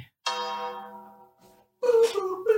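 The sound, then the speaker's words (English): A tolling bell sound effect: a single deep bell toll rings out and its rich overtones slowly fade for over a second; after a brief silence, a voice begins talking. “The bell tolls for thee, and the Undertaker is coming out to bury the Boston Red Sox, okay?”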